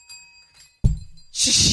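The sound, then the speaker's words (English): A small bell tumbles off a table: a sudden dull thunk, then a bright, shimmering metallic ring that swells and keeps jangling loudly. No one speaks. “It literally came towards me and fell off the table.”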